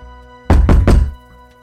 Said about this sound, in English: Then came a knock at the door.